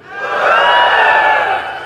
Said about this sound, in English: So to practice, because we're not used to this, on the count of three, I would like you just to give a little yell, a little whoop, just to loosen up. It's okay to yell in church today, okay? One, two, three.